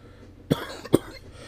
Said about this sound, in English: Sorry, guys. I have a cough. This won't go away, and it's annoying.